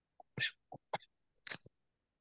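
A person coughs in a rough, uneven series of about four harsh bursts, close and fairly loud, sputtering as if choking on a drink gone down the wrong way.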